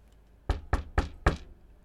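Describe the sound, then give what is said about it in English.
Four firm knocks on a wooden door in a steady, evenly spaced rhythm, clear against a quiet background with no voices. “Well then, I'm going to go up to the door and knock.”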